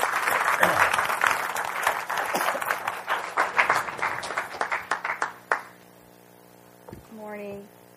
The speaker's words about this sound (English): She's going to come, and she's going to share her journey in faith and what the Lord has done in her. So let's give her a round of applause as she comes to share with us.